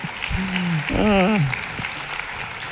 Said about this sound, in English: Well, thank you so much for sharing that. That was fantastic. And as you guys, now you can applaud for that.